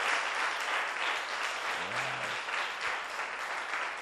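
A crowd claps steadily for a reverend, a dense wash of many hands sustained throughout at a fairly loud, even level, with a brief low tonal murmur partway through.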